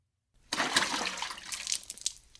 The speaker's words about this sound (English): As I tipped the 10th bucket of greasy grey water down the drain